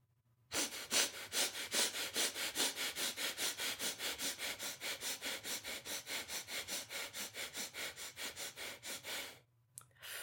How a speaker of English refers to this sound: If you are feeling really low, really tired, I recommend right now breathing really deep, really fast, 30 times. Okay, I'm gonna do it with you. You ready?